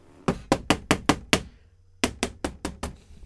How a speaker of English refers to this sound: Okay, let's knock on the door. And of course, they knocked on the door real loud.